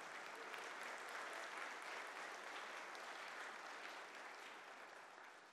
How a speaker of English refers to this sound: Clap. Praise the Lord.